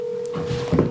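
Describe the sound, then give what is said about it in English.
A steady, unbroken phone tone hums for the whole second over a soft, rushing background noise as a call to someone's mom is placed, with no one speaking. “All right, well, let's call Mom.”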